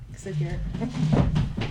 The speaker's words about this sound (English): Oh, yeah. Clunkety clunk with the chair.